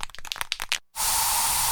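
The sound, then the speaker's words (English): A quick series of short rattling bursts, a brief pause, then a loud, steady hiss of aerosol bug spray being sprayed in a home, continuing without a break. “So you just used bug spray in your home.”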